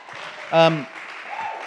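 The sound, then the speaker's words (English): An audience claps for the Reverend Dr. Winfield Bevins in a steady, dense patter for under two seconds, with one short voiced shout of a cheer rising briefly above the applause early on. “Can we give a round of applause to the Reverend Dr. Winfield Bevins?”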